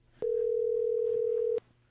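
A steady, single-pitched telephone dial tone hums for just over a second, loud and unbroken, then cuts off abruptly with no voices around it.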